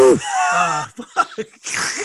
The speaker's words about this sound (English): I'm gonna leave that in just so everybody knows what I have to deal with cutting shit every week with your breathing.